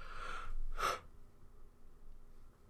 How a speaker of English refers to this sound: I'm sorry. I apologize. I'm not yawning at your joke. I'm just sleepy.